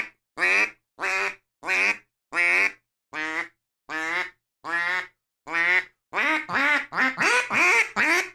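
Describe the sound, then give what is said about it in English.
A duck call blows a series of flat, nasal quacks imitating a mallard, about ten evenly spaced calls that quicken into a faster run at the end, loud. “It sounds like a mallard duck in the wild.”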